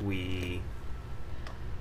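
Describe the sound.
A single sneeze: a short, voiced, strained intake that bursts into a sharp, breathy release, followed by a quiet pause with faint room noise.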